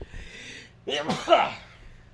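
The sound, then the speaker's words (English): A single loud sneeze: a brief hissing intake of breath, then a sharp explosive burst that trails off into a breathy, voiced tail. No one talks. “I think I'm allergic pineapple.”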